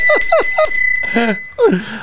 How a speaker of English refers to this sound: This is the first bell ring of 2024.